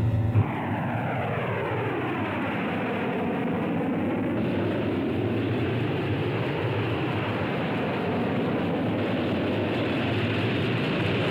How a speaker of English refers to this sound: Vindicator bombers of the Strategic Air Command on routine patrol. Each plane carries 220 megaton hydrogen bombs designed to detonate over enemy targets. At any given moment, night or day, flights of those airplanes are in the air.